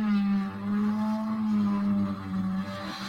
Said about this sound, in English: Someone's drilling through my wall, apparently. Oh. Oh dear. So, putting the mirror on the wall.